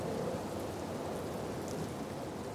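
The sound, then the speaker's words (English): Steady, gentle rain falls from clouds onto a mountaintop in a continuous soft hiss, evenly spread with no pauses, fairly quiet with no voices. “Now, gentle rain falls from the clouds down onto the mountaintop.”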